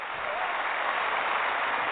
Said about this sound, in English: In the studio, you want to hit that applause button? Applause?